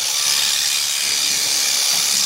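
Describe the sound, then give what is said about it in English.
Electric sheep shears run steadily as a ewe named Ruby, who is in lamb, is being shorn, giving a continuous bright, hissing mechanical buzz at an even loudness throughout, with no voices over it. “So at the moment he's shearing Ruby.”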